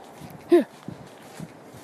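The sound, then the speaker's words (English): A dog gives one short, loud, high bark that rings out clearly, with soft footsteps crunching along in the background before and after it. “Oh, can you hear that dog?”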